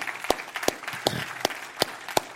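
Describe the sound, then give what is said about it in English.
An audience gives the Lord a hand clap, with sharp, evenly spaced claps landing about three times a second over a steady wash of scattered applause. No one speaks. “Y'all give the Lord a hand clap, amen?”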